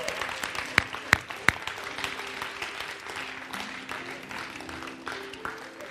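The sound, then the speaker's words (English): An audience applauds steadily, a dense wash of many hands clapping, with three sharp louder claps standing out near the start and a low background hum beneath. A church audience is applauding the mothers as they come up to the altar to receive a gift. “Oh, you can keep on clapping.”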